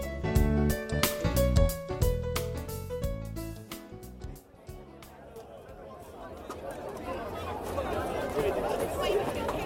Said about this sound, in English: Excuse me. I'm making my way through the crowd.